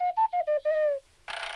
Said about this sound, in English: Yeah. The whistles are adorable. I want Bubo. Where is my Bubo?